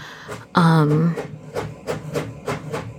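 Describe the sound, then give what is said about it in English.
A printer prints in the background with a steady train of short, regular mechanical bursts, moderately loud, while a voice hums a brief low tone near the start. “Oh, don't mind, that's my printer in the background.”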